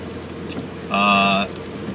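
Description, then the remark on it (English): Steady rain drums on a moving car on a rainy Wednesday evening drive home from work, a dense, even hiss with road rumble underneath, interrupted midway by a brief, clear electronic-sounding tone lasting about half a second. “It's a very rainy Wednesday evening on my way back from work.”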